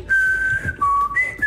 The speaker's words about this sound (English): That's whistling. That's not singing. That's it. Swear to God, that's it.